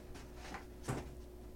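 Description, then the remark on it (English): A doorknob rattles and clicks as a door is handled, two short muffled knocks, fairly quiet against a low steady background hum, with no one speaking. “Oh, the doorknob. Oh, no. This is bound to happen.”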